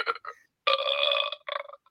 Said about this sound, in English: It does like a burp, does ….